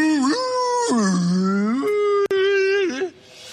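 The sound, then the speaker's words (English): A person imitates a whale call with long, drawn-out moaning tones that swoop low and rise again, loud, briefly breaking before trailing off after about three seconds. “I thought you could speak whale.”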